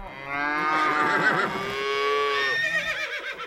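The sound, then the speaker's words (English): Loud cow moos blend with a horse's whinnying neigh, the bellowing and shrill calls overlapping in a brief burst of farm animal noise with no one talking. “That was supposed to be the sound of woos and yays, but it sounds like that was moos and nays.”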